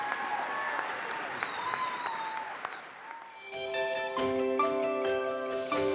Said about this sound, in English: So a big round of applause to my family, who are absolutely amazing. Thank you very much.